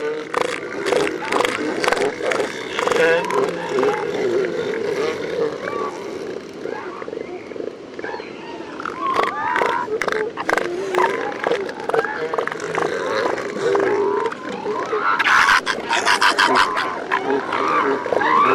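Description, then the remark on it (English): An elephant seal colony on San Miguel Island in full chorus: females and pups bleat and wail while deep, throaty bull calls and sharp percussive claps of bulls' flippers, fending off other males, pop out repeatedly over a dense, continuous din. “Here are some more of Mark's recordings from the elephant seal colony on San Miguel Island”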